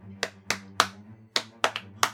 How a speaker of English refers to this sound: Why are you clapping?